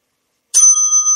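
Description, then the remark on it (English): After a brief silence, a bright bell is rung once for a correct quiz answer, with a sharp strike and a clear, sustained metallic tone that hangs on steadily to the end. No voices. “Let me do the bell. That is correct.”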